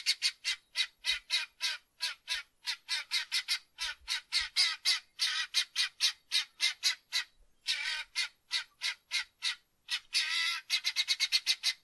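Chickens in a chicken coop squawk in a steady, rapid run of harsh, raspy calls, roughly three per second, loud throughout with no talking, rising to a quicker flurry at the end.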